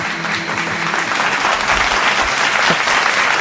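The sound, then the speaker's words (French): Steady applause from an audience, a dense wash of clapping hands that stays loud and continuous throughout, with no voices standing out. “Ben, il y en a qui applaudissent, ça veut dire que ça a un public, ce genre-là.”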